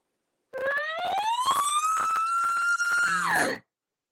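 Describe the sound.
A single elk bugle imitated on a game call: a whistle climbs steadily to a sustained high note, then ends in a rough, grunting 'rah' drop made with the voice. Loud, with no talking.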